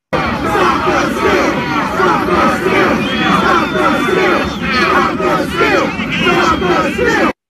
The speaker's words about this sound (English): But yeah, he was, there's this where we all shouted, stop the steal.